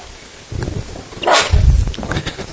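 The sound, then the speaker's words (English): A single sharp sneeze bursts out as a short, hissy blast midway through, followed by low rumbling and shuffling noises; no one speaks. “Bless you.”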